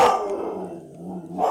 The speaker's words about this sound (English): Don't worry about the background noise. It's just dogs.